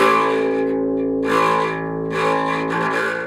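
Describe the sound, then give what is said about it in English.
Sustained harp notes, played without effects, carry a gritty, rattling buzz from a half-pressed pedal, the tone swelling a couple of times over a few seconds, fairly loud and with no talking. “And when you kind of half press it, it creates the buzz.”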